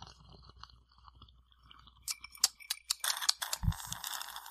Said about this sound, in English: Let me take a sip of my over Daddy's home. Heavy pour alcoholic beverage. Mm.